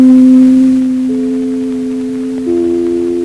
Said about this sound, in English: You know NBC's chimes.